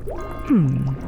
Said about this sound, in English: I wonder what happens if I push this. What? Who knocked over my bottle of frog livers into my cauldron? You're gonna ruin my spell.